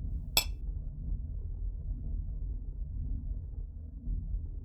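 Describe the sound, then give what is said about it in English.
One bright, sharp clink of glasses touching in a toast near the start, brief, then only a steady low rumble like an engine droning underneath for the rest. “Cheers to that.”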